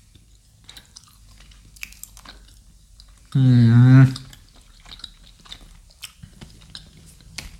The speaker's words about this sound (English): Yeah, I mean, I'm still chewing. And toffee has such a lifespan.